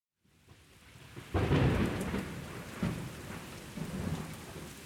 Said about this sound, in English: Despite the stormy weather that night, which caused high winds and heavy seas pounding the dock,